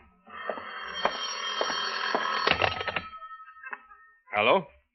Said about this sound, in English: Your phone, John. Answer it.